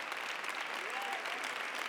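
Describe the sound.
A standing audience applauding together, giving the Lord a hand clap for His Word, a dense, steady wash of clapping from start to finish, with a faint voice rising briefly underneath the noise.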